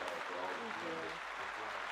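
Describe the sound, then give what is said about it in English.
A steady, dense round of applause fills the whole stretch, with voices murmuring and talking underneath the clapping. “So, hats off, a round of applause.”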